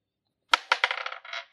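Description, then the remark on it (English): A d20 die, rolled for a critical-hit table and landing on 19, clatters across a hard table: a sharp first strike, then a quick run of bouncing clicks and a brief rattle before it settles, with no voices. “Go ahead and roll another d20.”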